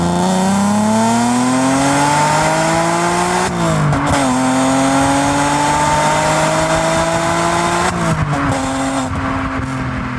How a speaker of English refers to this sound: which was developed in the early 70s, remained in production through till 2005. It was it's been classified as the most glorious sounding V6 engine ever produced by Evo magazine, and it's really, you know, the soul of a Ferrari, but for the masses.